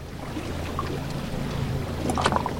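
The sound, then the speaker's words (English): A boat motor drones low and steady while water splashes and sloshes against the hull on a late-July boat trip near the mouth of the Mississippi, with brighter spray bursts near the end. No one speaks. “In late July, I took a boat trip near the mouth of the Mississippi with National Wildlife Federation conservation scientist Doug Inkley.”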